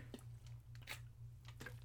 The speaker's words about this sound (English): That was me taking a sip of water. Do you want me to do it ASMR? If you do, let me know. I will be more than happy to.